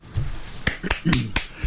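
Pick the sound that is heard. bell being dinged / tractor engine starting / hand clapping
hand clapping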